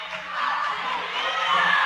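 A crowd at a women's basketball game cheers and roars steadily during play, a dense wash of many voices with scattered whoops and shouts, loud and sustained throughout without a break.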